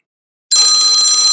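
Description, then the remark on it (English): A workout timer bell in a foam roller exercise session bursts in after a brief silence and rings continuously, loud, bright and metallic, with a rapid rattling shimmer and no voices. “And we got 5 seconds on the bell.”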